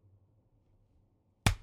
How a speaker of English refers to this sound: But I didn't have to clap there, but I did. I was like, you're getting ready to turn it off. He got the clap. He wanted the clap.